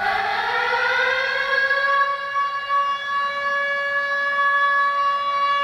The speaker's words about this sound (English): Ring the alarm.